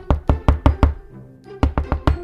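Knocking on a door: a quick run of five firm raps, a brief pause, then another run of five at the same brisk pace. No voices.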